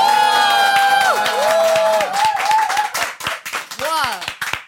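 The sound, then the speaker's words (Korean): A live audience at a recording in a hotel in the mountains of Tochigi Prefecture bursts into dense, steady clapping mixed with cheering and high-pitched whoops, the applause loud throughout and thinning into scattered claps toward the end. “현장 박수 소리가 있는 데서 녹음하는 게 얼마만인지 이게 진짜 나는 저는 이게 처음 네.”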